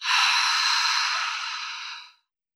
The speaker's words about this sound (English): Last time, breathe in deep through your nose and let it all go through your mouth.